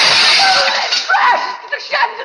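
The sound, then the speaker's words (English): A chandelier, with a man swinging on it, crashes through a window: a loud crash of shattering glass and clattering metal bursts out at once, then breaks into bright tinkling and jangling shards that scatter and fade over about two seconds. “The chandelier and Hubert, they crashed through the window!”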